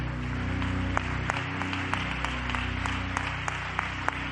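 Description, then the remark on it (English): A church audience claps hands steadily in praise to God, a dense wash of applause with a few sharper claps standing out, heard over a low sustained organ-like hum. “When you get down there, just clap your hands one more time because we're offering God praise.”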